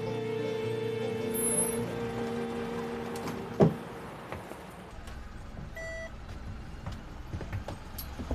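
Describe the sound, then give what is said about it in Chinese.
A vehicle approaching on a road, its engine rumbling steadily with a low droning hum, broken by a single sharp knock partway through and a short electronic beep toward the end. No one speaks. “喂，有车行啊！”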